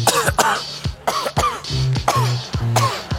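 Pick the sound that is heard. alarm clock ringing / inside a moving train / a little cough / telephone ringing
a little cough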